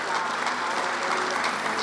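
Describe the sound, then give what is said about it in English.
A church crowd claps in steady, dense applause in appreciation of its volunteers, a continuous wash of many hands with no pauses and no voices over it. “Can we give our volunteers a hand clap of appreciation?”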